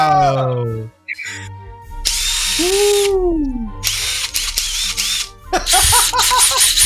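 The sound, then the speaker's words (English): Two power drills whir loudly in three revving bursts, their motors whining up and down, after a brief voice at the start. “A two-drill salute.”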